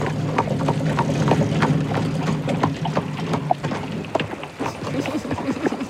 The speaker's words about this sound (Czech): Slyšíme, jak první přijíždí kočár s koňmi.